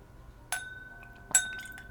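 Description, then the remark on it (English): Drops of water are added to a whisky glass, giving two light, bright glass clinks about a second apart, each leaving a thin ringing tone that fades slowly. No one speaks. “And I'm going to add my drops of water.”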